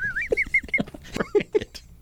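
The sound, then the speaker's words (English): A cluster of seagulls squawks in quick, overlapping bursts, the harsh nasal calls fairly loud, repeating rapidly for about two seconds with no talking. “Oh, was it the seagulls? The seagulls.”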